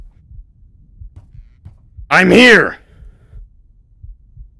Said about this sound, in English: Oh, I hate how the game just has a subtle heartbeat to it all of the time. It's awful.